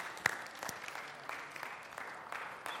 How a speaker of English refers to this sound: How about let's give our worship team a hand clap to this morning. Thank them. Praise God.